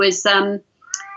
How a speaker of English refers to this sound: I can totally hear the cat now. Can you? Yeah, that's super loud.